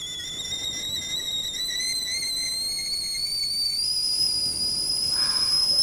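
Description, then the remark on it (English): A kettle whistles steadily as water boils for a pot of tea, a high, piercing tone with stacked harmonics that rises slightly in pitch and grows a little louder, with a soft hiss beneath and no talking. “Boiling, here it comes, right. Ready for pot tea?”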